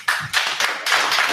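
A short burst of clapping from several people, quick overlapping hand claps that rise in a few surges and stay fairly loud, with no voices over it.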